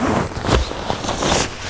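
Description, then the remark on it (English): A sleeping bag zipper being zipped up from the outside at 65 degrees, a steady rough rasp with a few sharper bursts of scratchy texture along the way, fairly loud with no talking. “And I always zip my zippers from the outside, just because that's a habit I've gotten into, because of the zipper pulls.”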